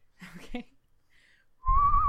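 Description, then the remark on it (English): After a short burst of murmured voice sounds, someone whistles a tune: a loud, sustained note that wavers slightly in pitch, with a breathy rush underneath. “I guess I'll whistle this out.”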